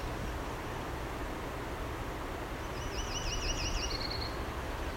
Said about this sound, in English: Something's annoyed. That'd be the myrtle warbler. That warble that changes slightly.